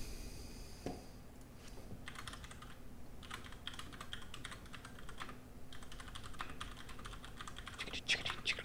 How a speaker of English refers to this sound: typing a secret message